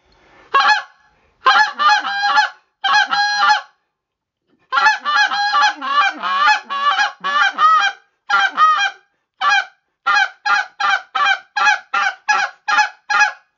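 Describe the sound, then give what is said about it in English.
A goose call used to attract flocks of geese flying high produces a series of sharp, high-pitched honks with a raspy, cracking edge, coming in quick bursts and then a steady run of evenly spaced calls, loud with no talking. “So that high pitch and the aggressiveness, when I'm seeing those birds with that high pitch with that raspy crack, is a great attention getter.”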